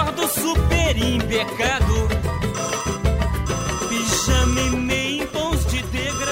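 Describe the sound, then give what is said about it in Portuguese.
A telephone rings with a loud, busy musical ringtone: layered melodic tones over a steady bass pulse, playing continuously for several seconds with no voices. “Alô, chefe Brody, telefone.”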